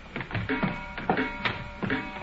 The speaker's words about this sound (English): I wish these stairs didn't squeak